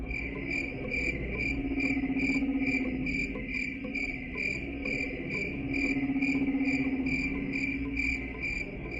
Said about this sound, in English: There was total silence. You could almost hear the crickets.